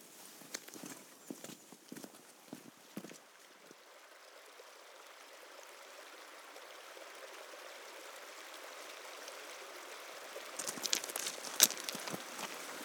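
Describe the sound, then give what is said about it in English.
Crunching footsteps on the loose gravel of a farm track give way to the steady rushing of the River Derwent flowing over a shallow ford, growing louder, with a few sharper splashes near the end. “A lovely wander down the farm track, loose gravel, and we've come to a ford over the River Derwent where the wanderer may wet their feet, but we'll not do that.”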